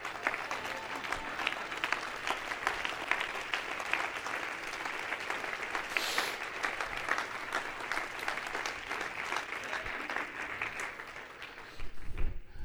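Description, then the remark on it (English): A large audience at a church service stands and claps hands in sustained, dense applause, a steady wash of many overlapping claps continuing throughout with no speech. “Everybody stand and clap your hands.”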